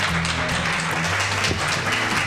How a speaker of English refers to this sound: I want you to stand up on your feet, and I want you to give the biggest round of applause. No, seriously, everybody stand up to David Fagan.